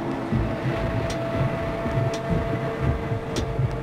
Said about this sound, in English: Das Scheppern auch. Das ist der Eimer.